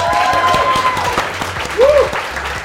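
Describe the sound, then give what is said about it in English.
A crowd claps and cheers loudly, dense applause with scattered whoops and a shout rising above the steady clapping, from the audience at a live show on a Friday night. “What an awesome crowd this is.”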